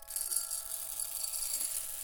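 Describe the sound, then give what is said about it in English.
Birdseed pours out of a food distribution slot in a steady, dry rattling hiss that carries on for about two seconds, fairly quiet, with no one talking. “Birdseed from this food distribution slot is not recommended for human consumption.”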